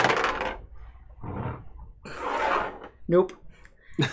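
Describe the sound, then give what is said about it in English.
Dice clatter and rattle across a tabletop in three bright, scattered bursts as a player rolls for an attack in a game, each tumbling roll lasting about half a second, followed by a couple of short vocal sounds. “So roll the next one.”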